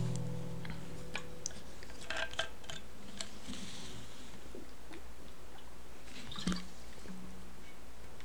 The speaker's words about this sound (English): quick water break.